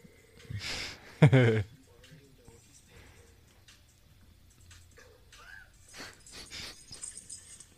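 A dog whimpers in short, high-pitched whines, with one loud burst early on followed by softer, scattered whimpers and snuffly noises.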